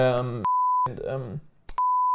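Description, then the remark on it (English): A man speaks in short bursts, cut off twice by a loud, steady, high-pitched censor bleep that replaces his words, the names of friends who lent him audio equipment, each tone starting and stopping abruptly. “Maybe I beep it out or not.”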